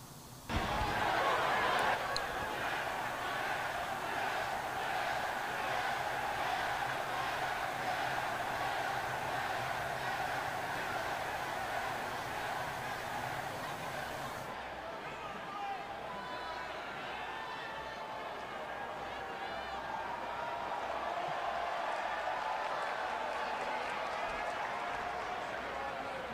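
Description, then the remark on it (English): A wrestling crowd roars and claps continuously in reaction to an interaction between Triple H and Bray Wyatt, a dense wall of cheering with rhythmic clapping early on, staying loud and steady for nearly half a minute with voices blended into the din. “But let's get this crowd reaction here.”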